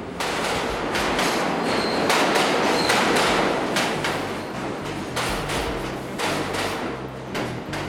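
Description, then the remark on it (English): A New York City subway train rumbles loudly along the rails, with steady clattering wheel beats and a brief high metallic squeal partway through, continuous with no voices. “Any city dweller is all too familiar with the screech of the subway.”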